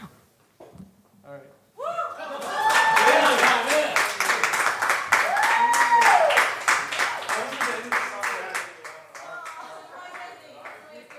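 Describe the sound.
Audience applause rises after a brief moment of quiet, with rapid, dense clapping lasting several seconds, mixed with cheering voices and some whoops, then gradually thinning toward the end.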